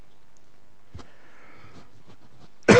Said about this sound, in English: Sorry about this cough.